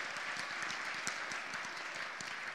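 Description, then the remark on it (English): Steady applause from an audience for a team after a pulling contest, dense clapping from many hands at an even level throughout, with no voices standing out. “Can we have a round of applause for this team as well?”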